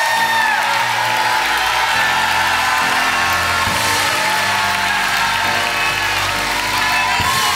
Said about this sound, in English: If that's the case, I want you to give a 1 minute hand clap and shout of praise to the Lord.